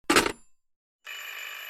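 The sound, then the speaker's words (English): A doorbell sounds at the front door of Professor Drake's home: a short, bright ringing burst, a brief pause, then a steady, buzzing ring that continues to the end. No one speaks. “Now there's someone at the door.”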